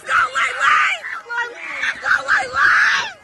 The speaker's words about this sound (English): You can hear her family cheering her on as she gains ground.